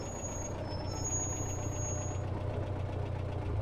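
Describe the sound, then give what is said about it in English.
A steady car engine idle rumbles low and constant, heard muffled from inside the car, with a faint knocking rhythm and no voices. “at this point, we've been on the exterior of the car to establish the location, and now we're going to shift from the exterior perspective to the interior of the car”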